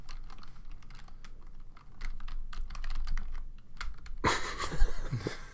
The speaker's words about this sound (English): Here the keyboard – clacking.